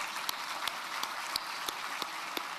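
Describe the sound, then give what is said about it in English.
A crowd applauds steadily, a dense wash of clapping with a few sharper individual claps popping out at a fairly regular pace. No one speaks over it. “Yeah, we can applaud for that.”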